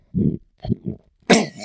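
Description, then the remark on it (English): A voice imitates a pig with low, guttural throat grunts: three short rumbling bursts, then a louder, harsher snorting rasp to finish. “Hey, can you do that pig noise with your throat?”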